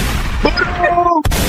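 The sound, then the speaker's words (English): A gunshot sound effect cracks once near the end, right after a brief dropout, following a dense noisy wash with thin whistling tones sliding through it. “Yeah, gunshots.”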